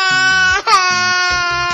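A baby wails loudly and continuously, with a brief catch of breath partway through before the high, strained cry resumes. Faint rhythmic background sounds play underneath.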